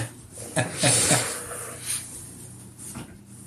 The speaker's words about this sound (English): Yeah, there go the cats. Stop.